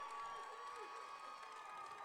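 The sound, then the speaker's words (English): A baseball crowd of Hackett fans and the opposing side cheers steadily on a full count, a dense wash of many voices holding at an even loudness for a couple of seconds, with a few higher shouts rising above the roar. “Hackett faithful getting loud. Both sides starting to cheer.”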